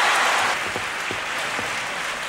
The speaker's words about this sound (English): Thank you. Thank you very much, members of the Academy, and thank all of you who applauded.